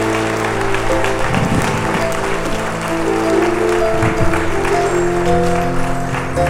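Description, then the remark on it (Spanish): A church audience claps loudly and steadily after a young woman accepted Christ, a dense wash of applause over sustained organ or keyboard chords holding underneath. “Un aplauso más fuerte.”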